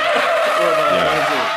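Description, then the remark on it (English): A loud, sustained tire screech, a high harsh squeal with shifting pitch bands lasting about a second and a half, alone without any talking. “You haven't heard it yet, but I put the screeching noise in, so that'll be in the next episode.”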